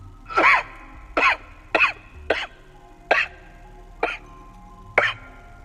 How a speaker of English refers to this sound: He ascends, stopping to rest on the landing, approximately halfway up. He leans against the railing and coughs several times.